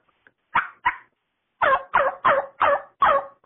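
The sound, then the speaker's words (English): A series of coarse, raspy jake turkey yelps made on a diaphragm mouth call, two quick notes followed by a slower, evenly spaced run of five or six louder, bark-like notes, clear with no talking. “And with a diaphragm, all you're going to do is slow down that rhythm a little bit and take all your tongue pressure off and breath the word chomp.”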